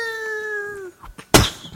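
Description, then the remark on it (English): A person imitates a kitten with one long, drawn-out mew that slowly falls in pitch. It is followed by a few soft clicks and a brief, breathy burst of noise. “To reenact the sound, it was like mew mew mew mew, mew.”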